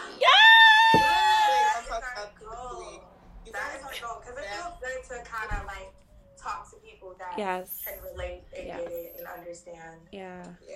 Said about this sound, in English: But, yes, girls, my baby screaming back there. I don't know if you hear her. Aww. No, she stopped.